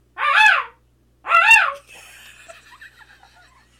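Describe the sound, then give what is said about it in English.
A person imitates a peacock's call with two loud, high, wailing cries in quick succession, each rising and falling, followed by faint trailing noise and soft background murmuring. “My actual... actual noise is also a bird. It's a peacock, and I will do it backwards because it's very low.”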